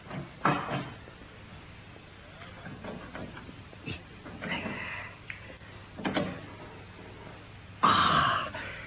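A heavy metal safe door clunks and clicks as it is worked open with tools, with a few scattered knocks and scrapes, then a louder metallic creak near the end as it swings open on bundles of letters inside.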